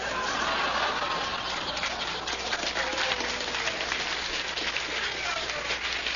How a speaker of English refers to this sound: I have fooled them again. Listen to the phonies applauding here. And speaking of fooling them again, we're here at the Limelight down in Greenwich Village.